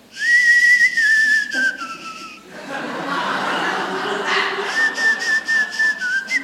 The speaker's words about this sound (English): Someone, I forget the name of it, but they've translated Spanish into whistles. And so there is a whistling Spanish.